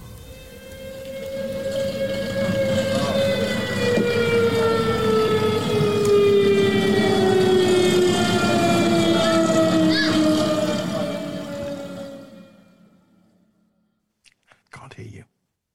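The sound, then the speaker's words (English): Loud roar of a three-ship formation of WWII Spitfire piston-engined warplanes of the Battle of Britain Memorial Flight passing overhead at Biggin Hill, the droning engine note sliding steadily lower as they fly by, then fading away, followed by a few faint handling noises. “Now they were ready and time to go, this three ship from the war, the Battle of Britain Memorial flight. Let the engines roar.”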